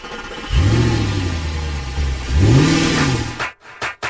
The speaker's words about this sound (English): Let's fire up the truck.